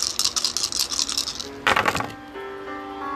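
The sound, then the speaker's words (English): Five twenty-sided dice (d20s) rattle and clatter together, a quick run of bright plastic clicks, then a louder burst as they tumble and settle onto a hard surface, with no talking. “So I'm going to roll 5 d20 at a time.”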